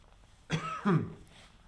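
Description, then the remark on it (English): A single fairly loud cough in two quick parts, a rough burst followed by a deeper voiced push, lasting under a second against a quiet background. “Okay, because why don't you just cough?”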